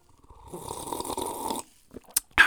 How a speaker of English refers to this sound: Sip of my coffee here.